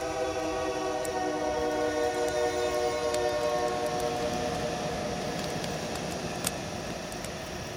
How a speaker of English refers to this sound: You guys hear a train? No. That was weird. I just had a moment where I thought I heard a train.